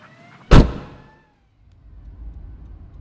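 The door of a Semper vehicle slams shut once, loud, with a short ringing decay. A moment of near silence follows before a low, steady rumble like an idling vehicle interior comes in.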